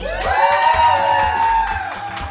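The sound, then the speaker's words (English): A live audience at a live show in New York City cheers and whoops loudly, with sustained high-pitched yells riding over a dense crowd roar and a thumping low beat underneath for a couple of seconds. “It's a good crowd. It's a good crowd. It's a really good crowd.”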